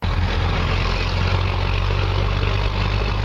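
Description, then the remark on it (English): A heavy diesel truck engine, modified to roll coal and blowing thick black smoke from its exhaust, rumbles steadily, a loud, constant low drone with a gritty roar over it, holding even throughout with no voices. “Thick black smoke coming out of the truck exhaust. Some drivers are modifying their trucks to do this on purpose.”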